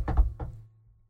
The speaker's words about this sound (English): And knocking on all the wood, we're 2 weeks in and haven't had an injury yet.